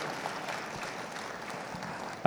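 Steady audience applause, a dense even patter of many hands clapping at moderate loudness, ending with a brief louder burst.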